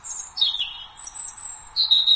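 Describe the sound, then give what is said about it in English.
A European robin's song played from a phone: a run of high, thin warbling phrases with sliding whistles and quick trills, continuous and fairly clear, with no one talking over it. “The sound of a robin.”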